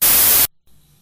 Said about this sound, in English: Wait, did that work? All I heard was white static noise.